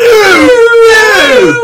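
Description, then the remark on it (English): A police siren from cop cars out front wails in a single long, high tone that wavers slightly, then slides downward at the end. It is loud and steady, with no talking. “And right in the middle of the dancing, you guys hear cop cars out front.”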